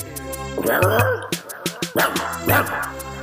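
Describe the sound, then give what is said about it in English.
A person imitates a barking dog, letting out three rough, growly vocal barks in quick bursts, with a few sharp percussive clicks in between. “That's my barking sound.”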